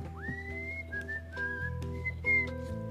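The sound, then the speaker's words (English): A clear, sustained whistle into a hole in a fence, holding a steady high pitch with a few brief stepped changes in tone, fairly loud over a soft background of low musical notes. “So Nancy whistled into the hole.”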